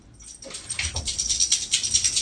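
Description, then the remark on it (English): A female dog whimpers, upset, with soft, strained whines over a hissy, rustling texture that pulses in quick bursts for a couple of seconds. No one speaks. “Your dog is shaking that one off. Yeah, she got really upset about that one.”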